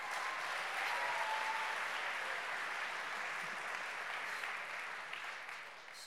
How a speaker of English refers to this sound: Okay, we're going to give her another round of applause because that was amazing.